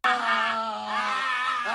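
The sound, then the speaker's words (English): A man shouts down into a urinal, letting out one long, loud, strained shout, held steady for under two seconds, with nothing else around it. “That's him pissing in his own mouth. Yeah. And shouting down the thing.”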